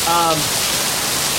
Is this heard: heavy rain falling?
yes